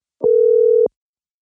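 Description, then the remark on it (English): A single steady telephone dial tone of an outgoing call, a clear, loud, even hum lasting just over half a second before cutting off, with no talking. “We get her on the phone? Let's call her.”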